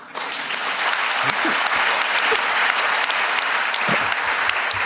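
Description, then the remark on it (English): Sustained audience applause welcoming the author John Humphreys, a dense, steady patter of many hands clapping at an even loudness for several seconds, with no speech over it. “That second bit of applause doesn't come out of my allotted time, does it?”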